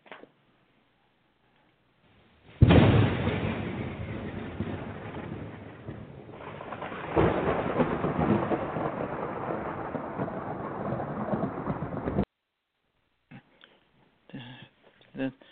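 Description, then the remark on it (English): During a thunderstorm, a sudden loud crack of thunder breaks into a long, heavy rumble, then a second boom swells and rolls on for several seconds before cutting off, followed by faint brief sounds. “Doesn't sound like no ordinary storm to me.”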